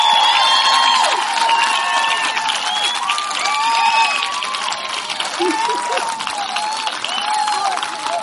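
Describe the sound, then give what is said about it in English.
A large crowd applauds steadily with whoops and shouted cheers rising over dense clapping, loud, continuing without a break throughout; the audience is applauding a singer who is about to perform. “Let's give her a W round of applause, folks.”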